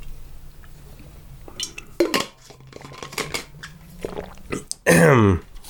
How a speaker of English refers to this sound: Okay. Quick water. Really quickly.